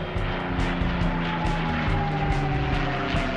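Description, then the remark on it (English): A P-51 Mustang propeller fighter plane drones loudly and steadily, its engine throbbing in rapid, even pulses with a slowly falling whine on top, and no voices. “This got Hatfield thinking how MJ's style and dominance paralleled the P-51 Mustang, which, as previously mentioned, dominated the skies with deadly results and was superior to all other fighter planes in its era.”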